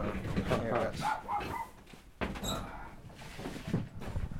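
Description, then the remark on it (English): Dogs bark outside in repeated, uneven bursts at moderate loudness, mixed with muffled voices and a couple of sharp knocks or thuds in the background. “Can't even get stoned, because then I start hearing them bark.”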